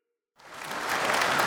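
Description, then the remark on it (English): After a brief silence, applause from a group bursts in and swells into a dense, steady wash of clapping that stays fairly loud, with no voices. “That's right! Clap for me, bitch!”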